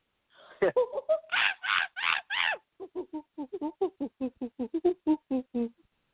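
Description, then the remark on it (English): A person imitates a monkey: a rising whoop, three loud breathy screeches, then a fast, steady run of about fifteen short, choppy hooting calls that bounce up and down in pitch. “And for my grand finale, I do a monkey.”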